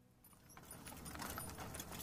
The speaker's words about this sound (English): Rose City, horse-drawn coach, moving, daytime.